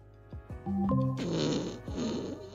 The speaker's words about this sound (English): That was a long and windy one. Would you like me to play another fart sound?